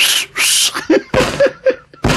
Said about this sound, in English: I'm working on that whistle. I can't get it.